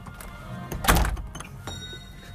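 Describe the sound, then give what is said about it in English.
A Starbucks door opens with a single dull thunk, followed by a brief rustle and faint shuffling as it settles. No one speaks. “The bell on the cow's neck jingles as you walk in the door.”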